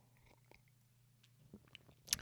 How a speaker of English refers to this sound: It's really a serious matter as I take another sip of tea.